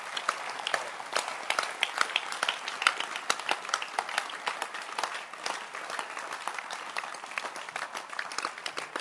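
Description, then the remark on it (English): A crowd applauds steadily for about nine seconds, many hands clapping at once in a dense, even patter with no voices on top, clapping for the helpers a preacher calls shepherds. “Can you clap your hands for these people?”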